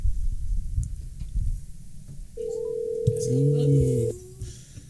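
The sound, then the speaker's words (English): A phone rings once on the line: a single steady electronic tone lasting under two seconds, heard through a call, with muffled low thumping and rumble underneath. “Does that mean we get to hear the ringing of the phone?”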